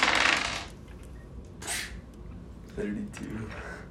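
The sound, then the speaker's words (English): Two percentage dice, rolled as a D100, clatter sharply across a hard surface in a loud rattling burst followed by two quicker, lighter tumbles, with faint voices murmuring underneath. “Oh, rolling percentage dice.”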